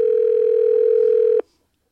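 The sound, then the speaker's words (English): A phone line tone sounds as a call from a Dot device to an iPhone mobile phone connects: one steady, fairly loud electronic beep held for about a second and a half, then cut off abruptly into silence. No one speaks. “Calling. Now we're going to his cell phone.”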